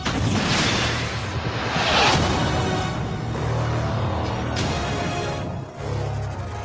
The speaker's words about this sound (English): Explosions. So many explosions.